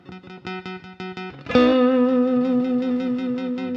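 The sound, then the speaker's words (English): Electric guitar plays a quick run of short, even plucked notes, then strikes one loud sustained note on the D string that rings out with an upward vibrato wobble. Underneath is a faint pulsing buzz from the B string being dragged across the frets without being picked. “You either hear that note on the D string bumping in and out, or you hear that ringing as it rubs across the frets.”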